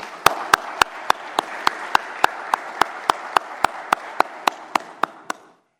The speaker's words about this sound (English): At this time, I'd like to take a moment to applaud your efforts. Let's give a round of applause to all of our football coaches and student athletes.